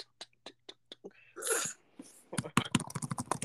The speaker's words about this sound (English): The podcast is just gonna hear you're typing the entire time.